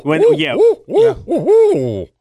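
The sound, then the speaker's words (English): A person imitates an owl to call owls in, voicing a quick run of about five swooping, rising-and-falling hoots, loud, with brief breaks between phrases. “I love hearing owls at night. Oh, that's so cool. I call them in.”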